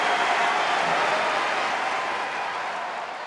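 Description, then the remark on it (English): A loud, sustained wash of crowd cheering and applause from a tennis audience at Wimbledon, dense and steady throughout, easing only slightly toward the end, with no voices speaking over it. “Cheer as loud as he's heard in all his days at Wimbledon.”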